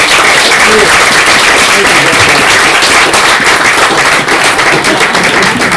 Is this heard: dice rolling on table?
no